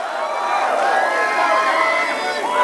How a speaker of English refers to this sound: Bernie Sanders speaking to supporters live on WSB Radio. The crowd chanting, "Feel the burn," which has become the hashtag movement